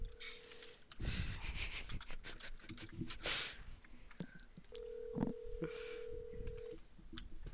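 An outgoing phone call made on a computer: brief dialing tones and clicks, then a steady ringback tone sounding twice, clear, with scattered tapping noises and no talking.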